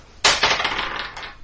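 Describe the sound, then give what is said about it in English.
Dice clatter across a hard tabletop, starting with a sharp impact and then a second or so of rattling bounces that taper off. The sound is fairly loud, with no voices. “Alright, given it's my first, I will extra effort and try and hit him again. Yep. I've changed dice.”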